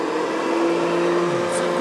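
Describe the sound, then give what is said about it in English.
A vacuum cleaner runs steadily for the evening's second vacuuming, a loud continuous motor whir with a droning hum and a broad rushing hiss, holding one pitch throughout with no voices. “Oh, I got a vacuum, excuse me.”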